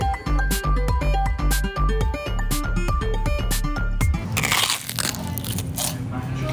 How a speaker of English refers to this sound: That's the sound of a prawn cracker in McChina.